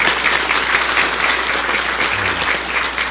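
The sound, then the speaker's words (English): Steady, dense applause from a church audience for the choir after their music at an Easter morning service, a continuous wash of many hands clapping at an even loudness throughout, with no voices standing out above it. “Please give the choir one more round of applause for their music this morning.”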